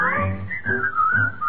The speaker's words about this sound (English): Whistle your blues and whistle your cares and whistle your troubles away. You will be in style pucker up your lips and keep a whistling all the while.